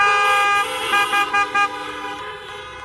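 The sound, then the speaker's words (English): Several car horns honk together at a drive-in worship service, a sustained blare followed by a few short toots, fairly loud, with overlapping tones and no talking; people in their cars toot to say amen. “Just a quick toot on the horn to say amen, to affirm what's being said.”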